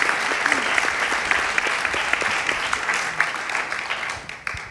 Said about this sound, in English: A round of applause there for Amelia.